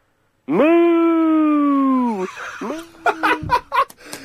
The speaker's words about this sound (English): What a beautiful, beautiful song. And we got a sneaky moo in at the end, which is always nice. We'll add that. You'll hear that again.